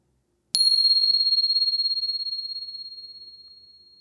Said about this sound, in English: So settling back in, and here comes the bell.